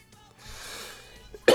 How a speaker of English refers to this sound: I know I cough. I'm coughing a lot, you know. The boy need a lozenge.